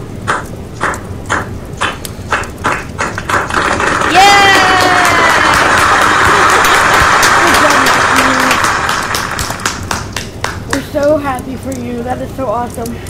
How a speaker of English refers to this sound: clap for me